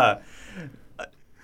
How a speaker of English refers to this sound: Excuse me. I'm burping up whiskey. Glenlivet. 12 year.